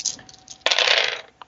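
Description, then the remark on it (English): Five dice clatter and tumble across a hard surface in one brisk rattle lasting about half a second, followed by a single small click as one settles. “Well, I actually only have 5 dice in that.”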